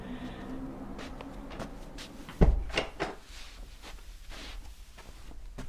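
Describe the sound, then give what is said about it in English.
A door swings shut with a single solid thud partway through, preceded by soft shuffling and handling noises and followed by faint rustling movement. “Come in and close the door.”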